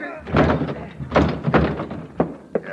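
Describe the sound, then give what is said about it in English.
A door is crashed open with several heavy, booming thuds and crashes, the blows coming in an uneven series over a few seconds. “Crash the door, Logan.”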